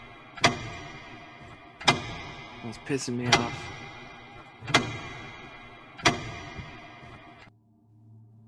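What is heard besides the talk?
clock ticking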